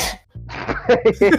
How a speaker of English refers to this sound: Bless guy. I would say bless you, but you're going straight to hell. That sneeze. Oh shit, that's a boomer sneeze right there.